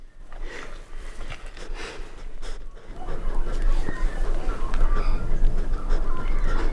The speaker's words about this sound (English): That's Candy the wombat there sniffing at Laura's microphone.